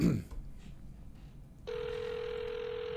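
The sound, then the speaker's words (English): A phone line ringing on an outgoing call to a childhood pediatrician's office: after a brief muffled sound and a quiet pause, a steady electronic ringback tone starts and holds clearly through the end, slightly hissy as if heard through a handset. “It's ringing.”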